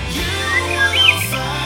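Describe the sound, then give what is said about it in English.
A few quick, high chirps of birds in a garden flicker briefly over a steady low droning background, light, with no voices present. “We're putting the spotlight on the birds in your garden.”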